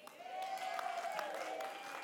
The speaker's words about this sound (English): Don't cheer yet.